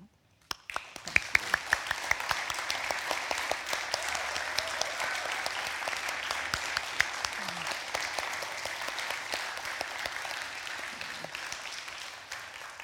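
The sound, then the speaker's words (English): Sustained audience applause for people who have served in the armed forces, ahead of Memorial Day: a dense, steady wash of many hands clapping that begins abruptly and holds at an even level for about twelve seconds, with scattered sharper claps poking through. “So if you have served in the armed forces, would you please stand up and let us applaud you?”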